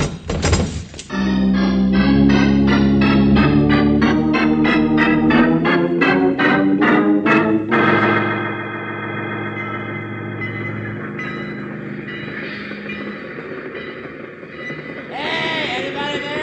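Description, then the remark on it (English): A train draws near with loud rhythmic chugging that quickens over several seconds, then gives way to a sustained, steady tonal drone and rumble. “Oh, a train, huh?”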